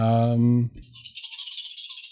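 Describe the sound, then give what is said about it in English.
A short burst of a voice gives way to a steady rattling clatter of a large handful of dice shaken and tumbling together for over a second. “That's a lot of dice.”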